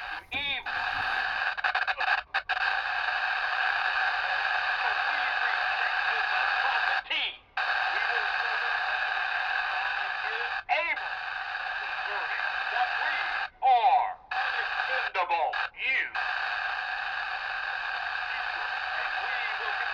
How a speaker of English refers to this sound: Turn up the static.